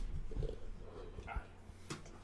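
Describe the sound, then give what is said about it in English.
A dog gives a few short, scattered barks and whimpers, fairly quiet against a low, muffled background rumble, with no one speaking. “Where's the dog? God damn it, where's the dog?”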